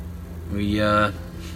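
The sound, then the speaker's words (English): A truck engine idles with a low, steady rumble, then revs once in a short rising surge before settling back, with no talking. “That was my truck.”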